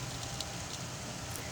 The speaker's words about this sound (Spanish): Lluvia.